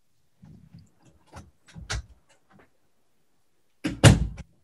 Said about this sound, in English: Shut the door. We are alone now.